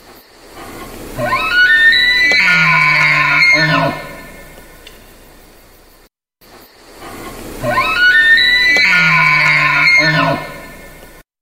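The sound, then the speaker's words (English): An elk gives a loud grunting call twice, each roughly three seconds long: a harsh, rising, whistle-like tone layered over a deep, throaty rumble, with a brief silence between the two calls. “All that was an elk. You know, essentially a very large deer. Deer tend to make grunts like that as well.”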